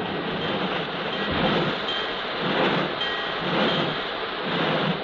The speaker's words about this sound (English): Half hour later, surely no one was more surprised than Kathy when she found herself being backed out of the train shed, coupled to a wooden caboose, brought to a stop beside the rain-swept station platform.